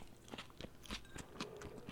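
Crisp, crumbly crunching as falafel is broken apart by hand, a series of short irregular cracks and crackles over a couple of seconds, fairly quiet, with no talking.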